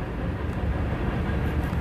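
A steady, heavy rumble of a train rolling by, a continuous low roar with a broad hiss on top that holds even for the whole moment, with no voices.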